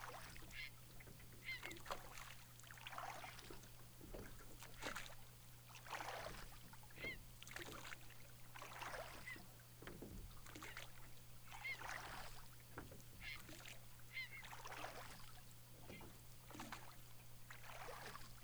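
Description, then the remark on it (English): Oars dip and pull through water in a steady, repeating rhythm as a boat is rowed towards a larger island, each stroke bringing a soft splash and swish, continuous over a low steady hum, with faint bird honks now and then. “The oars and the pulse of the water gently help move the boat towards a larger island composed of crumpled mountains.”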